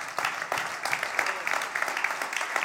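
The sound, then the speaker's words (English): A crowd applauds steadily, a dense wash of many hands clapping at once with no one speaking, holding an even, moderately loud level from start to finish. “I love it when I say things and people clap.”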